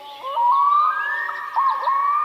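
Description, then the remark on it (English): A black-throated loon gives a long, clear wailing call that slowly rises in pitch, breaks briefly, then continues in a second drawn-out note. Loud, with no other sounds. “This is the black-throated loon.”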